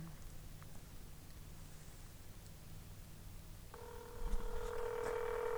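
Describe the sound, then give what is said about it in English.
A low background hum gives way to a steady electronic phone tone, like a call ringing through a speakerphone, starting partway in and holding fairly loud until the end. “Put on a speakerphone and record it.”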